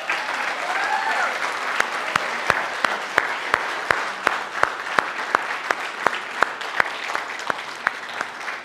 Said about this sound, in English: So if you guys would give them a round of applause.